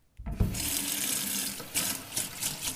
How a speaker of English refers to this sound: Alright, I really need to wake up. I'll just go splash some water in my face or something.